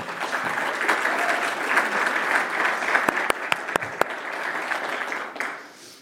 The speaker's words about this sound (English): I don't know if this was shared, but all of our students set those things up for us last week. So please give them a round of applause for that.